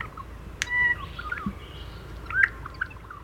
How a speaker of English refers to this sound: The males sing to attract a mate and to establish territory, and they have a beautiful, simple song. It has bill snaps involved in it, a clicking sound followed by a sort of upward whistling motion.